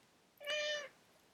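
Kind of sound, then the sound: animal, cat meowing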